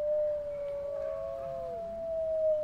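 Several wolves howl together, one long steady note held throughout while other voices slide up and down beneath it in overlapping, drawn-out tones. No talking.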